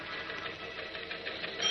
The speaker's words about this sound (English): he reaches out and rips the long sheet of paper out of the machine just as the clatter of the keys stops